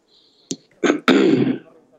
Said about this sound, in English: I'm sorry, I have a little. I actually tested positive yesterday, and it's a little bit of a cough.